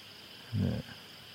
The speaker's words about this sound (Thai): ทั้งกบทั้งเขียดส่งเสียงดัง